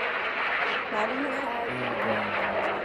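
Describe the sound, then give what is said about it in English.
A steady, loud jet roar with a broad rushing hiss and faint shifting engine tones underneath, sustained evenly throughout, as a jet flies overhead. “Or like a jet when it flies over? No. I don't know. A jet. Yes, I was right.”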